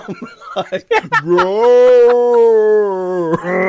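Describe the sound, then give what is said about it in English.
After a few short vocal bursts, a voice lets out a long, sustained roar-like growl that holds steady for about two seconds before cutting off, imitating the sand creature played by Thomas Haden Church roaring. “I do love the fact that Thomas Hayden Church gets the ability of the shark from Jaws 4 and for some reason just roars a lot.”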